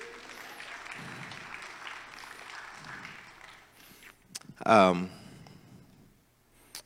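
An audience claps steadily for several seconds, a dense, even patter of many hands, then a brief loud cheer-like burst rises over it before the applause fades away.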